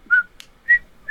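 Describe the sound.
A person whistles a short melodic phrase of three clear, bright notes, the first and last held, fairly loud with no talking. The tune is a TV show theme.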